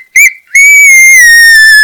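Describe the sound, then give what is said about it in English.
A voice imitates a raccoon's yell as it is picked up: a short, sharp squeal, then a long, loud, high-pitched shriek that holds steady and slowly dips in pitch before cutting off. “When he picks him up, the raccoon goes, and its face yells like this.”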